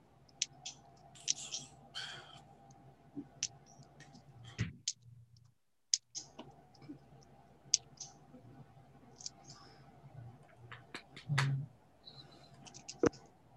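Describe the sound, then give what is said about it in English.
Dice clatter and click as they are scooped up and shuffled by hand, a scattered series of sharp taps over a steady low hum, with a brief pause midway. “Just grab some dice here.”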